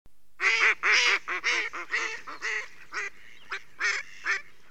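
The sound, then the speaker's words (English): A run of loud duck quacks, about ten harsh nasal calls in quick succession, the first few strongest and the later ones a little softer, with no voices. “They're ducks.”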